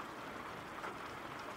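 Steady rainfall hisses without a break, a dense, even wash of pattering drops with no voices and no pauses in the downpour.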